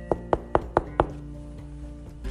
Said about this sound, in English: Mason walked with the other elves towards Prancer's office. Prancer was waiting there, and Mason knocked on the door.